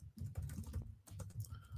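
Rapid keyboard typing of a tweet to RJ City, a quick irregular run of soft clicking keystrokes with brief pauses between bursts, fairly quiet, with no voices.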